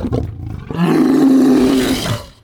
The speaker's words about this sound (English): As Horik downs the last Deinonychus, you hear the trademarked Tyrannosaurus Rex roar.